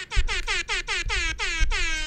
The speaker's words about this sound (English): You use your free trial on the app, you only get 1,000 air horns. I'm out of air horns. You gotta go premium after that, baby.